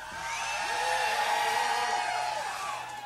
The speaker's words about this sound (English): Let's scream for a second. Just get out. Scream really loud for a second.